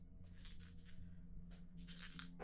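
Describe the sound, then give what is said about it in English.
Three dice rattle and clatter in two short bursts as they are rolled for a technology check, tumbling across a surface, quiet with a low background hum and no voices. “That's two successes on my three dice.”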